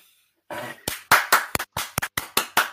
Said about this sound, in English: Don't you clap for that.